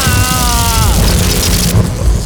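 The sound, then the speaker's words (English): A loud, sustained thunderous crash of a lightning strike breaking through a glass cathedral ceiling, with a falling whine at the start and harsh crackling noise throughout, brightening into a sharper hiss near the end. “Now, based on my calculations, the lightning should break through the glass and strike you at...”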